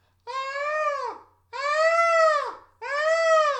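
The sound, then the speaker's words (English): A voice imitates fox calls with three loud, drawn-out wailing screeches, each about a second long, high and harmonically rich, dropping in pitch at the end, separated by short pauses. “But the fox noises I heard were something more like.”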